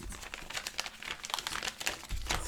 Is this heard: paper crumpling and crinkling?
yes